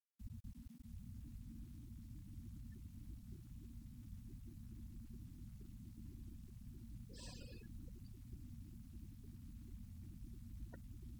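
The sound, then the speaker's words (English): A blower fan drones steadily through the room, a continuous low rumbling hum with no pauses. Around the middle a brief higher-pitched chirp or squeak rises above it, and there is no talking. “So the sounds are coming and going, the sound of the blower, the sound of people moving, maybe every once in a while the sound of traffic.”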